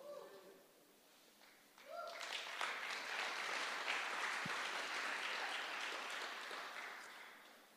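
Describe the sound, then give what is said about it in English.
An audience at a sermon breaks into sustained applause, many hands clapping in a dense, steady wash that swells quickly and holds at full strength before easing slightly, with a few voices underneath at the start. “I'm doing much better than how you are clapping.”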